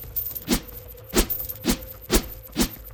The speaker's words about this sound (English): Shishiro flicked his iron wrist, and the chain came to life in his hand, whirling through the night air with cold, deliberate menace.